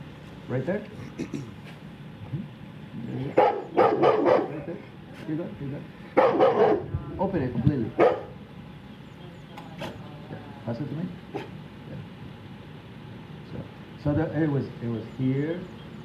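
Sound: rottweiler barking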